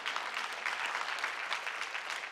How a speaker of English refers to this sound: And we understand that Jesus Christ is the truth. Yeah, give the Lord a clap.